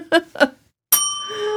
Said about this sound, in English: I love that bell.